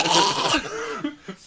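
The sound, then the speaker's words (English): A loud sneeze, aimed at the sneezer's shoulder with the microphone right beside it, blasts into the mic as a harsh, breathy burst, then trails off into softer throat and breath sounds. “I was trying to sneeze into my shoulder, and the mic happened to be next to my shoulder.”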